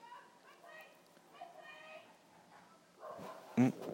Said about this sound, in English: What's happening? Some dog barking. Must have escaped.